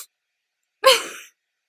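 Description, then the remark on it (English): A single breathy sniff during a kiss, a quick rush of air through the nose lasting about half a second, sharp at the start and trailing off, heard alone against silence. “There is a sniff sound, but it also looks like there's an actual kiss.”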